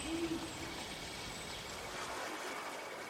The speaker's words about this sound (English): The powerful owl.